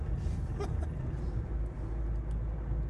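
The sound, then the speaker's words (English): A steady, low engine rumble and road drone from a moving car, continuing evenly throughout with no clear voices over it. “Do the listeners know I'm driving your car?”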